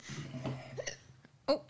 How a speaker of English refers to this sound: Hiccups. Yep. Mm. You just need to hold your breath for a little bit. Mm-hmm. Actually, you should drink because when you get hiccups, it's because you've got a tickle in your throat.